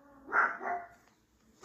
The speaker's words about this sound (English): See, there you go. So there it goes. So the way it looks, I'm not sure if that's like its abnormal size, but that dog gets freaking annoying.